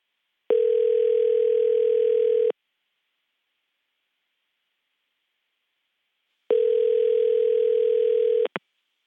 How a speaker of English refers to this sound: I have a number for Joycelyn. So I tried to call